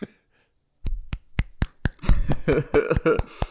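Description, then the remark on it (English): A few people clap in a quick, uneven burst of about a dozen sharp smacks. Voices cheer and chatter over the second half of the claps. “We're all very proud of him for pulling it off. Everyone clap.”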